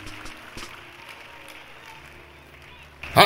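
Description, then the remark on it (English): An audience gives a big clap offering to Jesus, clapping together in a dense, steady patter with a murmur of voices underneath, then the applause swells abruptly louder at the very end. “Give a big clap offering to Jesus.”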